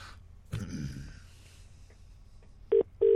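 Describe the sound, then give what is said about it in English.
A phone call being placed: after a brief clunk and quiet, a steady electronic ringing tone starts, sounding twice in quick succession, clear, with no one talking. “I was ringing, so he's not on the tube or anything.”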